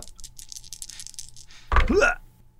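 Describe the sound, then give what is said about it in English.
Two small eight-sided dice rattle and clatter in a quick run of light clicks as they are rolled for damage in a tabletop game, then a short vocal exclamation breaks in near the end. “Oh, I get 2d8s. Oh. All right, roll these gently so I don't have a repeat of the Kraken Dice incident where I blew it up in my hand.”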